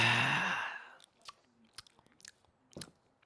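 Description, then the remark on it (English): A breathy slurp fills the first second, then fades into scattered small wet clicks and mouth noises, like chewing, with no talking. “Because people like you and I try to have conversations and somebody slurps and we go off topic and we end up talking about something else.”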